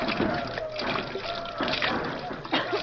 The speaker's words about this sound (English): There, I think that's enough. Now pour the acid from the batteries onto the plates.